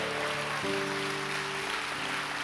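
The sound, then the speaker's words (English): An audience at a church sermon claps steadily, a dense wash of hands that stays even for the whole stretch, with sustained keyboard-like notes holding underneath. “If you're going to clap today, give them a good hand clap.”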